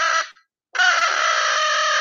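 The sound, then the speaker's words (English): A crow call is blown loud: a short, raspy caw, a brief pause, then a longer, harsh, fluttering blast imitating a crow. The flutter comes from the uvula, not the tongue, while air is blasted through the call. No one speaks. “What you're doing, and you do that across the crow call, and it creates a good crow sound.”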